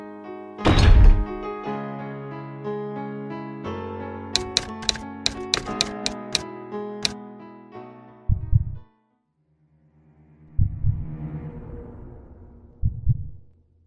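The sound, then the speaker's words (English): A heavy, solid iron door is pushed open, groaning with a long metallic creak, starting on a loud thunk, rattling through a burst of clanks, then settling with a few dull thuds. “But I muster every last ounce of strength and push the heavy door open.”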